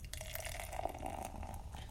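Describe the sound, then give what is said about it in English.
Amber-colored beer pouring steadily into a glass, a continuous gurgling, splashing rush of liquid lasting the whole two seconds with no voices. “So I'm going to pop my top. Ooh. My top. Nice. And the pour.”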